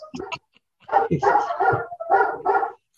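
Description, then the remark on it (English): Two rescue dogs bark at someone at the door in a quick series of loud, sharp barks, one short burst followed by a longer run of overlapping yaps, with no talking. “Someone must be at the door. Seriously, that's the only time they bark.”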